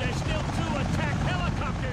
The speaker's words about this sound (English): That's loud for everyone. Yeah. Yeah, let's keep talking through this helicopter taking off.